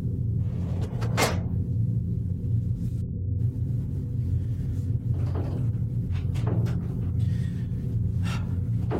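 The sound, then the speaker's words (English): A door knob rattles and clunks in a few sharp, uneven bursts as someone struggles with a stuck door, over a steady low rumble in the background. “the door isn't opening. Just open the door. Just turn the knob and open the door.”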